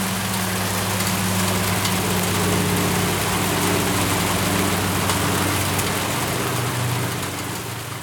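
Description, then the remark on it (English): Hail drums steadily outside a studio in a dense, continuous clatter, with a low mechanical hum running underneath and no voices. “It's hailing at the studio.”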